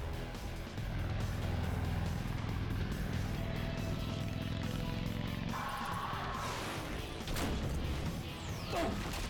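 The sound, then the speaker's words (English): Steady traffic noise with vehicles rumbling past, a continuous low engine drone and road roar, punctuated by a few sharp knocks and a brief higher whoosh near the end. “See all those cars driving by?”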